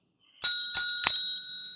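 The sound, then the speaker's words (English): A small bell rings three times in quick succession, each bright strike overlapping the last before the clear metallic tone lingers and slowly fades. “Every time a bell rings, it means some angel's got his wings.”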